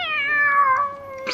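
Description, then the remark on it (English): A single drawn-out cat meow, loud, its pitch sliding gently downward over about a second before trailing off, with no voices around it. “Killed the kitty cat.”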